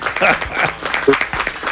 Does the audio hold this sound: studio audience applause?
yes